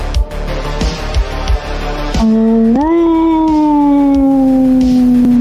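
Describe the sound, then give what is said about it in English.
A loud howl begins after about two seconds of busy, clattering noise. It swoops upward, then holds a long drawn-out tone that slowly sags in pitch. “This is where you howl.”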